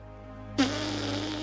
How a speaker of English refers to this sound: Why not blow your nose and take another bite?